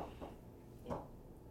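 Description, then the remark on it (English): A few soft, muffled knocks on a door, the Crave Van knock, unevenly spaced, with the last one slightly louder, heard faintly with no one talking. “That sounded like my knock.”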